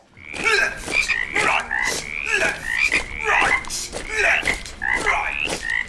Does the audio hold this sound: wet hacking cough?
no